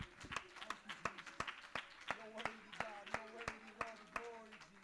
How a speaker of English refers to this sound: Come on, why don't we clap our hands real quick?